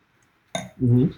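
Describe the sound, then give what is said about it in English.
A single bright clink of beer glasses in a toast rings out after a moment of quiet, followed by a short low hum from a voice. “Cheers. Get it in.”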